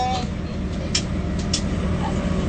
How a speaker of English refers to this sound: Cinch the Beaver asks, are you on a train? No, we're on a bus.